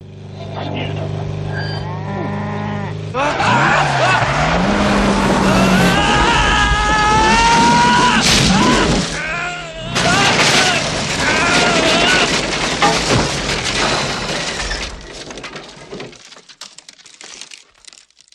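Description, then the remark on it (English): A car on a South Carolina highway skids with loud, wavering tire squeals and engine noise after coming upon a woman with a cow in the middle of the road, followed by crunching and crumpling impact sounds, while voices cry out over the commotion before it fades. “Accident. Woman in the middle of the road with a cow!”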